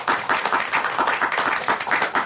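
An audience applauds steadily, many hands clapping in a dense, continuous patter that stays fairly loud and even throughout, with no voices standing out.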